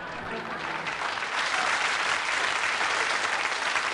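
An audience breaks into loud, sustained applause for Les Dennis doing his Mavis impersonation, a dense wash of many hands clapping that swells slightly and holds steady for several seconds with no voices standing out.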